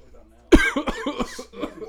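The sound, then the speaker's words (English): A sudden, loud cough bursts out, followed by a quick run of several rougher, raspy coughs that gradually taper off. “I just came and coughed at the same time.”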